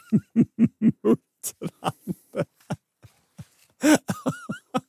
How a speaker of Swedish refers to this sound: Exakt, ett muttrande, knorrande läte. Giraffer har ett lågfrekvent, märkligt brummande läte. Och det här är mest nattetid. Uh-huh. Ja, och det är knappt men ändå fullt hörbart för människor.